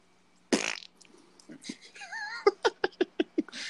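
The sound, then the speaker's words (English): A short, loud, raspy fart noise bursts out, then after a brief pause a rhythmic run of laughter follows, with a few higher squeaky vocal sounds in between. “So he literally got out of an interview or an interrogation by farting.”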